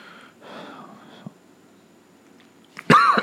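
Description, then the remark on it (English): A person who is sick imitates a sharp, muffled cough into the pit of their arm near the end, one loud breathy burst, following a few seconds of quiet murmuring breath. “I did that into the pit of my arm, covered up.”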